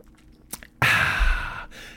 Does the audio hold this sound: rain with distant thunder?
no